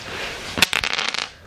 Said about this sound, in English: Let's roll some dice. All right, not a one, please.